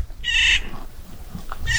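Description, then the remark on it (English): Two harsh, buzzy bird calls ring out among whitebark pine trees, one early and another starting near the end, with a quiet outdoor background and no talking. “It's not just a set of connections I might describe scientifically, but these trees and these birds right in front of me.”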